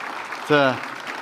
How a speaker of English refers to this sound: How about if you give them a huge round of applause?